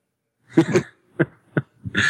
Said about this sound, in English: Coughing as fast as I can.